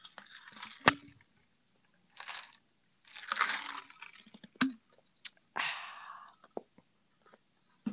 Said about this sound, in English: As I have one more sip.